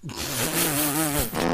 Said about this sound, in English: The dog has gas.